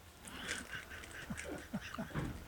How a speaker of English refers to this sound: Duck Commander, the tour. All right. So it's a limited edition. This is based off the old Uncle Si duck call, which was the worst sounded one we ever did.